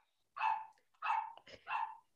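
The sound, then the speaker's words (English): A dog barks three times in a steady rhythm, each bark loud and clear, with brief pauses between them and no talking. “The dog senses evil, clearly.”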